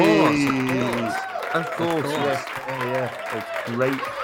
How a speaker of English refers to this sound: And the winner for the Daddy Award of the Best Family Film goes to... Oh, there's no surprise there. It's Soul. Thunderous applause.